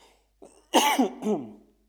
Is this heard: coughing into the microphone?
yes